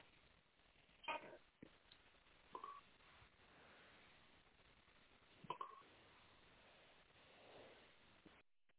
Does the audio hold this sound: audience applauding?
no